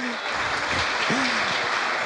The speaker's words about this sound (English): Give yourselves a clap, everyone, that was pretty good.